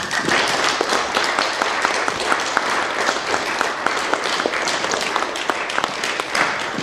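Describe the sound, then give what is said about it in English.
An audience in Salt Lake City applauds steadily for several seconds to welcome author Ian, a dense wash of many hands clapping at a constant loudness, with a few individual claps standing out from the mass. “So without further ado, I'd like everybody to give a warm round of applause to Ian.”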